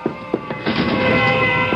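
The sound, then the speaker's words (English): Fire truck sirens wail in a steady, high, layered tone as the trucks come down the block and pull up in front of the building, joined partway through by a swell of rumbling engine and road noise that grows louder. “What's that? Sirens.”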